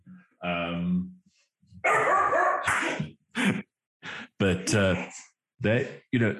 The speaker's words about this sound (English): The dog noise is free.